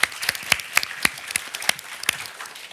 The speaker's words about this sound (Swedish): Tack så mycket. En applåd.